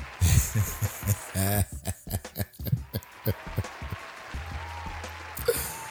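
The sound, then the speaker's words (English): A short burst of applause sound effect: a brisk, irregular patter of hand claps lasting several seconds, fairly loud, with no one talking over it. “I think it's so crazy when they have, like, applause in podcasts.”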